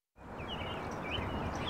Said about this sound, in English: Birds chatter in the trees above the River de Pere Greenway in the southern part of St. Louis. On this mild December afternoon, a handful of children practice soccer in a park right next to the bike and footpath that follows the river.